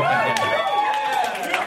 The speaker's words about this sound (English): So, a couple people at the end are like, I'll tell you what, not only am I not going to clap, I'm going to yell no.